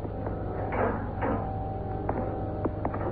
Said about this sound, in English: Before I open the compartment door, Happy, check your spacesuit air supply indicator again.